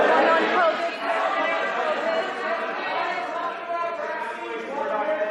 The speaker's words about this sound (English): And you hear the reporters yelling. And, you know, what I found particularly interesting is that the liberal press corps is hitting him on this fact. That he will not take questions.